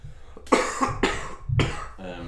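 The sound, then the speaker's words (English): Three harsh coughs come in quick succession, each a loud rough burst, followed by a short voiced throaty sound as the fit trails off. “Nice cough on the pod.”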